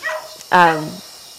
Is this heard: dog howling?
yes